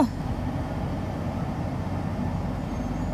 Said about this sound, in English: So, as we podcast down this road, by that, the bus driver is driving down the road, and I'm just podcasting.